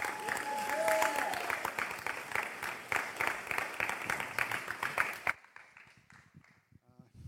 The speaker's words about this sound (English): Would you guys give him a huge round of applause?